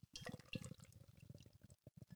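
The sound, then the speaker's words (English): Beer glugs and splashes as a double pour goes into a pint glass, too much to fit, a steady gurgling stream with bubbly fizz, briefly pausing near the end before resuming. “It's definitely not fitting in my pint glass.”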